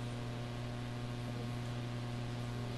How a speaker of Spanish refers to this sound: ¿Serán los ventiladores que no me deja oír?